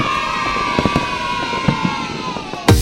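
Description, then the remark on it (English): Fireworks pop and bang several times at uneven intervals over a steady murmur of a crowd, with a louder burst near the end and faint cheering. “The Milford Haven Roundtable Free Fireworks Event, Tuesday the 5th of November.”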